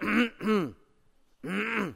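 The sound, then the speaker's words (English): A voice imitates the coughing of a man seated next to the speaker on an airplane: two quick, harsh throaty bursts, a short pause, then a longer rasping one, fairly loud with no other talk. “And he coughed.”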